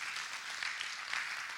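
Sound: audience clapping hands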